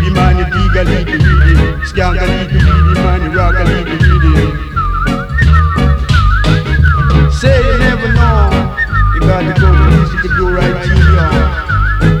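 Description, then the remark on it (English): A high, warbling whistle-like tone wavers continuously over loud, busy music with a heavy low-end beat, persisting in the background throughout. “That whistling in the background does get a little bit annoying though, doesn't it?”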